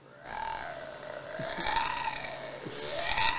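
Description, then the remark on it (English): A person imitates a cat's growl with one long, raspy, throaty rumble lasting about three seconds, wavering in pitch and swelling slightly louder toward the end. “And I'm sitting there, and then all of a sudden I hear this growl.”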